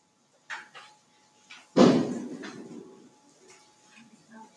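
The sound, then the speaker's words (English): A single loud firework bang cracks out and rumbles away over about a second, preceded by a couple of soft pops, with a faint steady hum underneath. “Fireworks are already beginning to go.”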